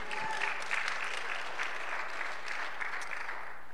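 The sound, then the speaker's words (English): An audience claps their hands for the Lord in sustained, dense applause that fills the whole stretch at a steady level, with a faint low hum beneath. “Give the Lord a hand clap for that.”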